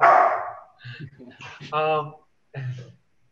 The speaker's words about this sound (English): This is just the dogs playing, sorry.